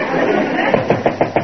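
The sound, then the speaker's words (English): Five quick, evenly spaced, firm knocks on a door, rapping out in a steady rhythm over a busy background hum. “Throckmorton, answer the door.”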